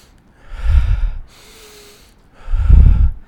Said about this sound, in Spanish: Entonces, ¿cómo es la respiración Wim Hof? La respiración Wim Hof es inhalar y exhalar de forma relativamente profunda.